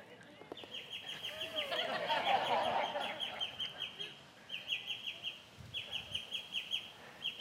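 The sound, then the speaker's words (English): Birds singing: a rapid series of high, rhythmic chirps runs throughout, joined midway by a fuller, warbling burst of song, then settles back into steady repeated tweets. “And then he turns to the people who are present before him and he orchestrates the birds to sing simultaneously as he's speaking.”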